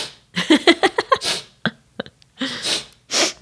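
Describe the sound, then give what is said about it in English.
A person imitates sniffling: a quick run of snorting, nasal huffs, then a few sharp, breathy sniffs with short pauses between them, fairly loud and with no talking. “You always sniffle in the mornings.”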